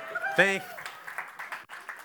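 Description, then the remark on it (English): A church audience breaks into a patter of scattered clapping that builds into steady, moderate applause, with a brief vocal whoop or cheer just before the clapping takes over. “Feel free to applaud anything I say, by the way.”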